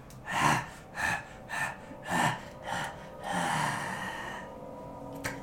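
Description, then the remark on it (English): A voice imitates heavy dog-like panting: five quick, breathy gasps in a steady rhythm, then a longer drawn-out exhale trailing off into quiet. “Seems like it's like a dog panting out its tongue, you know.”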